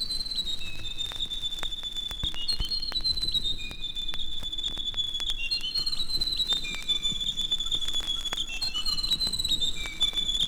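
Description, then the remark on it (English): A grey warbler (riroriro), a bird found throughout New Zealand, sings a high, thin, wavering song of drawn-out trilling notes that rise and fall, continuing steadily over a soft low rumble and scattered faint ticks. “According to Maori legend, the Rirorido, or grey warbler, was a wise bird with knowledge of the changing seasons.”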